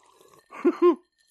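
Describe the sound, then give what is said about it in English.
A short, wet slurping sip of a beverage in two quick pulses, the second slightly longer, rising out of near silence and then stopping abruptly. “Take a little sip.”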